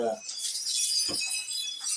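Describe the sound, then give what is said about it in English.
Hanging key chimes found in Brazil jingle together, a bright, shimmering metallic tinkling that rings steadily for two seconds, with a brief voice at the start and one soft low thump midway. “I don't know if you have a set of these, but key chimes, like literally keys hung.”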